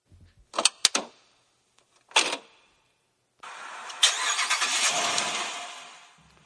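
A car door opens and shuts, then an engine cranks and turns over, settling into a steady idle that gradually eases down in loudness.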